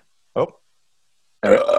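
A short, low belch is followed after a pause by a longer, louder, throaty burp that rumbles on to the end; both are close and stand alone.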